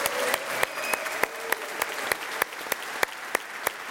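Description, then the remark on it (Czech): An audience applauds steadily, a dense wash of clapping with sharper, evenly spaced claps cutting through in a regular beat. No one speaks. “Pozor, takovýhle aplaus ještě neměl.”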